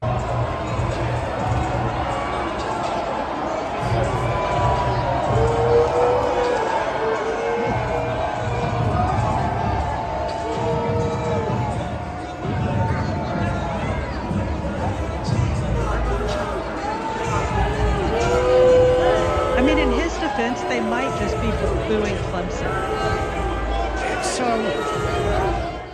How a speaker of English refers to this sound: So that's they might just be booing Clemson. That's the clip that the mainstream media decided to run with.